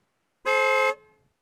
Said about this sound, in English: Yeah, we're waving and honking,